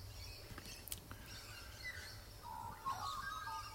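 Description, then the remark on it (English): Faint outdoor birdsong in the morning: scattered chirps and short warbling calls over a steady low hum, with a brief cluster of brighter tweets near the end and no talking. “You hear those birds. You feel my morning.”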